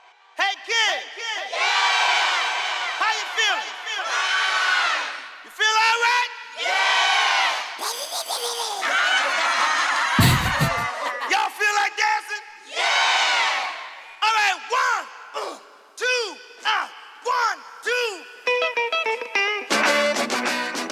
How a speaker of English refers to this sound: So that is obviously gold for a producer because it's just like uninterrupted vocal shouts and stuff.